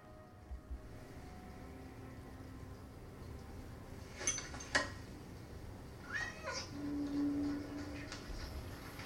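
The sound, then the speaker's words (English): A cat meows quietly a few short times over a low, steady background hum with no one talking. “Yeah, you might want to have a cat in space.”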